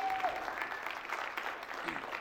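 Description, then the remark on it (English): A church audience applauds its NMI president with steady, dense clapping that holds at an even level for the full couple of seconds, a continuous wash of many hands with no voices standing out. “So we give him one more round of applause, please.”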